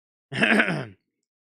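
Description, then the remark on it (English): A single short, voiced yawn, fairly loud, with a breathy, groaning tone that swells and fades in well under a second, surrounded by silence. “I apologize for the yawns.”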